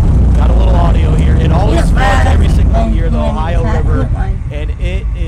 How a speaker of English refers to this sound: On a jet ski ripping laps at PRP.